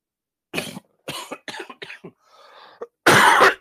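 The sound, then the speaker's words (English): A string of dry coughs in quick succession, followed by a brief quieter pause with faint throat noise, then one final loud, harsh cough. “I mean, even your coughing sounds, it comes through loud and clear”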